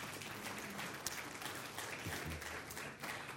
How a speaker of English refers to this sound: In fact, my mom's here today. My mom is here today. Yeah, you could applaud for her.